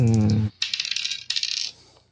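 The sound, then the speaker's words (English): Dice clatter and rattle on a hard surface in two quick bursts of bright tumbling clicks, after a brief tonal sound at the start, as push dice are rolled in a tabletop role-playing game, coming up a 5 and a 3. “I roll a 5 and a 3, so you have enough push points that you can wipe this, so that you can evade this if you want.”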